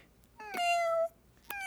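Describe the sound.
A person imitates a cat's meow: one drawn-out, slightly falling mew, fairly loud, followed by the start of a second mew that cuts off at the end.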